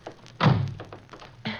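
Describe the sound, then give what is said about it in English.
A car door thuds shut with a heavy, low thunk as people hurry into a car, and a second, somewhat lighter bang follows about a second later. No one speaks. “Quick, get in the car.”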